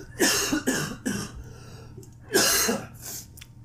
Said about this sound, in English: You sound like you've been smoking, though. Yeah, dude. Got a smoker's cough.